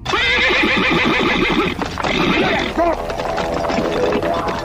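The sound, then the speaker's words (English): A horse whinnies loudly, its shrill, wavering neigh repeating over a rhythmic pounding of hooves as a rider gallops it as fast as he can, with the whinnying continuing to the end. “He panicked, jumped on his horse, and started riding as fast as he could.”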